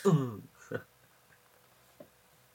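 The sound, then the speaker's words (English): Someone clears their throat because of something in it: a loud, voiced rasp followed by a shorter, harsher burst, then a faint catch a moment later before quiet. “Sorry. There's something in my throat.”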